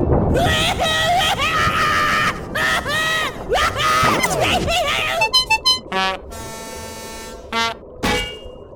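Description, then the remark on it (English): A loud, piercing scream wavers and swoops in pitch for several seconds, breaking into short shrieks and ending with brassy, horn-like blasts. “Knock the clock right off the wall. That is some scream.”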